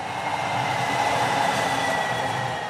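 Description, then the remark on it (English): A light rail train speeds down University Avenue with a steady, loud rushing rumble and a faint high metallic whine running through it, holding constant for a few seconds with no voices. “And even today, you'll hear the light rail speeding down University Avenue.”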